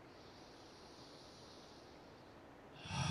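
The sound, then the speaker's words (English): A deep breath drawn through the nose swells up loud at the very end, following several seconds of quiet background hiss. There is no talking. “And if those breathing sounds is weird for you, just let it go.”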